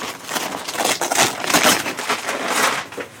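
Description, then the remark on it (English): Brown paper crackles and tears as a package, neatly wrapped in brown paper with a brown paper box inside, is unwrapped in an office, a steady run of crisp, crinkly rustling bursts with a few louder rips over several seconds, with no voices. “The package was wrapped neatly in brown paper.”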